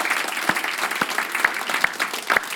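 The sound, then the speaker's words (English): An audience applauds the worship team steadily, a dense wash of many hands clapping at once, with a few sharper, louder claps standing out. “Can we give the worship team a round of applause?”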